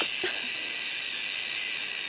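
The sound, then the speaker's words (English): A leopard gecko's scream: a steady, breathy, high-pitched hiss that holds at an even level for about two seconds, with a brief squeaky chirp near the start. No talking. “That's what a leopard gecko sounds like when it's screaming.”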